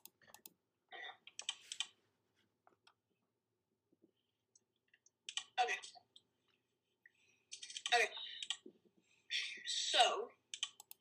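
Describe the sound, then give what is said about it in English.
Loud computer keyboard typing comes in several quick clattering bursts of keystrokes, separated by short quiet pauses, with the heaviest flurries near the end. “Oh my gosh, your keyboard is so freaking loud, bro.”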